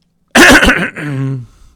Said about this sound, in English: Excuse me. Let me clear my throat